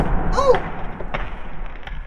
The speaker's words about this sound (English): What was that skeleton I just knocked over